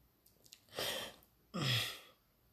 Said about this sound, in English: Excuse me for clearing my throat.